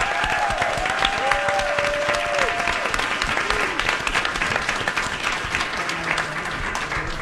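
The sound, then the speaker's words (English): A crowd applauds two people being thanked, loudly and steadily throughout, a dense wash of many hands clapping, with a couple of rising whistles cutting through in the first few seconds. “I want the loudest applause for them because they're just amazing.”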